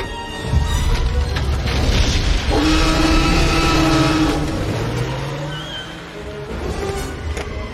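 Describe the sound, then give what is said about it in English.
A car engine turns over and roars to life, revving loudly with a rising whine, then its pitch settles into a steady drone as the vehicle pulls away. No one speaks. “Hey. Start the engine.”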